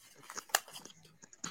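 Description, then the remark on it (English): Paper being folded and creased for origami, with soft irregular crinkles and rustles and one sharper crackle partway through; quiet overall, with no voices. “What is the paper folding?”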